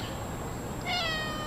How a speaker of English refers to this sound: How many did you see so far? Wow. This is filling the room with six. There are six cats, and that is worth 3 points.